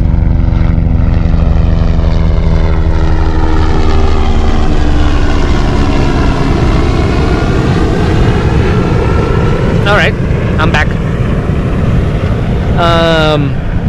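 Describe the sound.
A helicopter flies low overhead, its loud, steady rotor and engine drone filling the scene, with the pitch sliding downward as it passes. A brief voice cuts in near the end.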